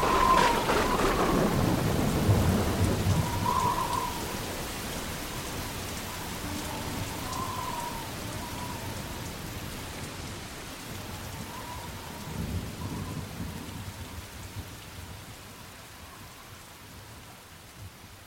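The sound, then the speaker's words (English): Steady hissing rain pours throughout, broken by deep rolling rumbles of thunder, a strong one at the start and a softer one later on. No one speaks. “So I gotta wait till after the rain stops, then I'll come out.”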